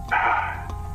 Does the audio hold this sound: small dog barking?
yes